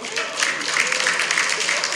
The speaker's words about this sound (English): Clap it up for Oprah.